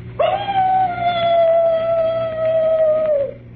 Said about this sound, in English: The mournful howl of a dog. You know, in every ghost story, there's always a dog howling someplace. Well, that ain't a real dog. It's just a standard ghost sound effect.